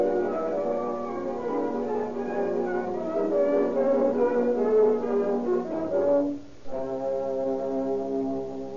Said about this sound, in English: Here comes the ambulance now.